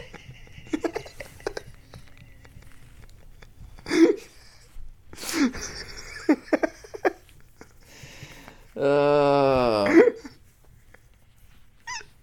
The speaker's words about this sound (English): This hiccup just makes it sound like we have an excited girl in the room.